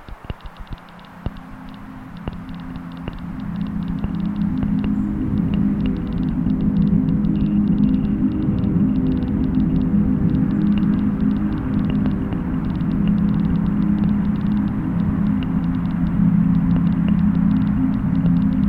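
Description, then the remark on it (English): A thick, droning synth bed from the Hambach Noises plugin by Karl Mung holds steady low tones throughout, layered with scattered clicks and chirps of birds and trickling water, building from quiet to a sustained level with no one speaking. “You can hear some birds, water, a bunch of different sort of droney synth sounds.”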